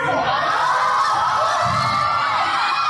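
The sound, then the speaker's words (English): A large crowd cheers and shouts steadily at a powerlifting competition, a dense wash of excited voices and whoops filling the space at a loud level for the whole stretch. “Who's cheering for this?”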